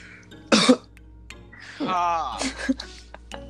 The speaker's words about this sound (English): Cough. Not. Cough. Cough, cough.